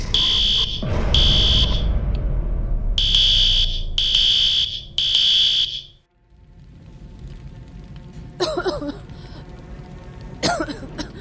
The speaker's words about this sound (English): That's odd. Man. I don't remember scheduling a fire drill.